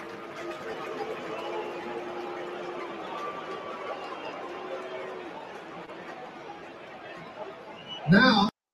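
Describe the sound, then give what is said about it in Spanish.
A large crowd of New York Yankees fans at Yankee Stadium boos team owner Hal Steinbrenner loudly and steadily, long low drawn-out jeers blending over a roar of chatter, easing slightly toward the end before a sudden harsh burst of noise cuts off. “Fans de los Yankees abuchean fuerte al dueño”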